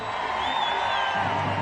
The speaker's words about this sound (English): Crowds of people are standing beside the river and on the bridges. They are cheering and waving flags.